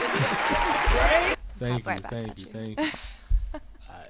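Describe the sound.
A crowd applauds loudly for just over a second, a dense, hissy wash of clapping that stops abruptly, followed by someone talking with a brief chuckle.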